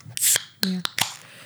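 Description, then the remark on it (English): A sudden sneeze bursts out with a sharp hissing blast, followed by a few quick voiced catches and breathy bursts, all within a second and a half. “Yeah. Bless you.”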